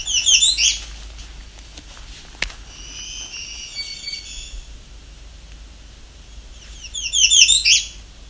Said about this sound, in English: Ends with that. It's definitely an American redstart. However, the redstart doesn't always do that.